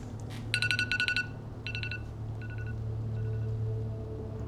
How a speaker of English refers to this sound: Does that timer noise give you guys PTSD-induced shivers like it does me?